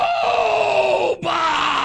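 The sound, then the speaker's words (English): A man screams the word "robots", long and strained, his voice sliding downward before a brief break and a renewed loud shout. Loud, with no other sounds. “screaming robots on the loop coming out of the PA system”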